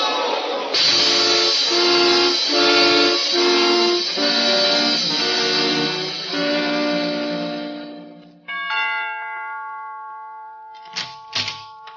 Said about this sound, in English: Look out! There's a train coming!